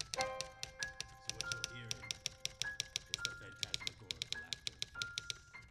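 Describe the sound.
Rapid, crisp tapping of someone texting on a phone, a steady flurry of clicks with short pauses, ringing tones sounding through it, and faint voices murmuring underneath.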